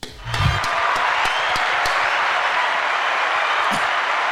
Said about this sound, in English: Round of applause for us.